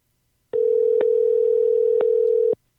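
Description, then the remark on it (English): A telephone dial tone while calling someone at the firm Billet Badges: one steady, mid-pitched hum holding for about two seconds, with a few soft clicks along the way. It starts and stops abruptly, and no one speaks. “Let's give Steve a call from Billet Badges.”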